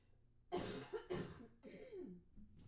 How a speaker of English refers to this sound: I'm so sorry I have to cough again. I'm just getting over this, whatever this little virus thing was. Just give me one sec.